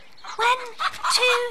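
A voice imitates chickens clucking and squabbling in their coop: three loud, squawky, high-pitched bursts in quick succession, clear, with no other sound behind them.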